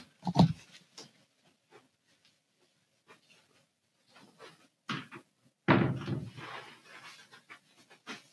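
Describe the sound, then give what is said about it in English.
A person gets up and shuts a door that a dog had opened, a solid thump with a few softer knocks and bumps before it and a breathy, panting rustle continuing afterward. No one speaks. “I'm going to quickly get up and shut the door.”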